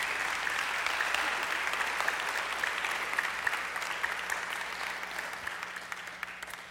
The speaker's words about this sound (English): I tell you what, she deserves a nice round of applause for helping us do what we do.